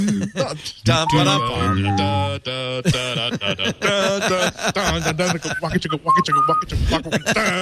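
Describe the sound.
Several people try to whistle the A-Team TV theme tune but can't remember it. The melody is halting and uneven, mixed with voiced humming, chuckles and bits of vocal noise, fairly loud.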